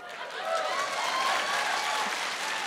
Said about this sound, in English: Don't applaud her, she knows. Save that applause for when I get it right.